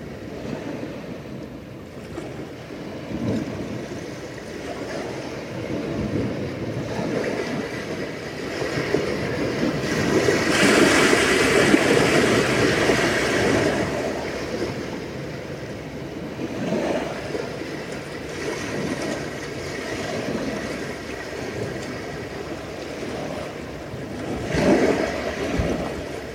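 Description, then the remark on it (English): Continuous ocean surf rolls and washes, with waves swelling and breaking in loose surges, louder around the middle, over a steady windy rush. No voices. “The ocean never disappears.”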